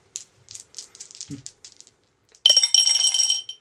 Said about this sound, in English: Should we roll the dice? Yes. Okay, well, let's play Roulette. Roulette.